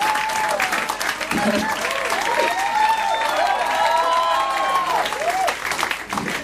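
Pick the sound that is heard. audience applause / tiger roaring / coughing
audience applause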